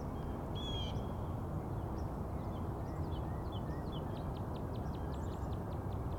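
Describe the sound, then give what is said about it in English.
Wild bird calls ring out over a steady low rumble of background noise: a clear whistled note early on, then a quick run of short, sharp, high chirps toward the end. “So it's a good time for all these bird songs to get started.”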